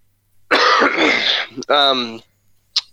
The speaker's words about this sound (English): Excuse me one second, I cough.